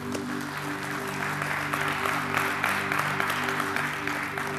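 An audience gives God a praise clap after a prayer, a dense, steady wash of applause lasting the whole moment, with a sustained organ-like tone humming underneath.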